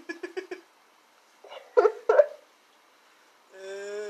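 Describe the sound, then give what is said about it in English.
A female dog named Juno plays rough, attacking a person: a quick string of four short yips, a pause, then a few louder, throaty growling bursts, ending in a sustained high-pitched whine. “Alright, well, I guess for the fucking remainder of this episode, you get to listen to her dog attacker.”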